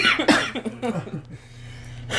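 A harsh, raspy coughing fit, several rough bursts in the first second, trailing off into quiet breathing before a final short hack.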